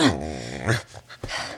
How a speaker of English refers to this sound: Casper is in bed next to me, burrowed deep under covers. It would be adorable if there weren't a dog butt on my pillow.